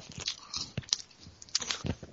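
Someone eating, with a steady run of crunchy bites and chewing in an irregular rhythm. The mouth noises are moderately loud and there is no talking.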